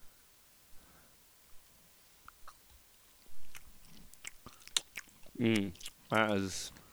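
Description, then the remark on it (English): Wet chewing of a soft, dill pickle-flavored gummy candy, with sticky smacks and clicks scattered over several seconds, then a couple of short muffled vocal sounds near the end. “Take a little chew. It's like it's a half a pickle.”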